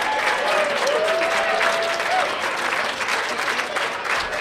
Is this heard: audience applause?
yes